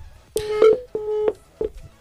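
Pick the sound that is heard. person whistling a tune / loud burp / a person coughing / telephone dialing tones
telephone dialing tones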